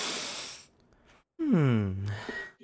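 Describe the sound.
A long, loud, hissing sniff, then a short pause and a voiced, falling groan-like sound that trails off low, with a faint breathy tail.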